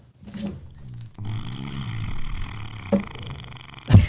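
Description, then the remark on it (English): A buzzy, low-pitched fart sound effect: a short blurt, then a longer, rumbling, sputtering one lasting a few seconds, ending with a couple of sharp thumps. No talking. “In the meantime, I'll play a fart noise.”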